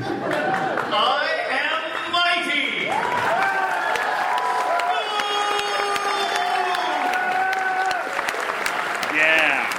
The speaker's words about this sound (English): That sounds like, I mean, with all the cheering, right? It's like he was, the Tick was really, like, it sounds as though the Tick actually showed up.